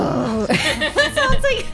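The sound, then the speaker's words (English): A voice makes a strained, gravelly monster growl imitating a Chain Devil, not very deep, in a few quick snarling bursts lasting under two seconds. “Ooh, I can't do the low growl like Justin and Graham can, but it's just like...”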